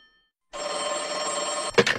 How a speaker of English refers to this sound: The phone in the office rings and his dad answers it.